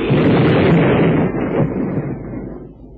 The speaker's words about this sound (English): Well, what a caper. His boat blew up.